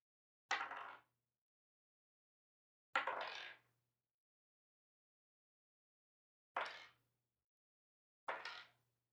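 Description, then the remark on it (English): Dice, including a d4, clatter across a tabletop in four short bursts as damage is rolled for a critical warhammer hit, each a quick rattle that settles within half a second, separated by pauses of a few seconds. No voices. “Okay, roll damage, please.”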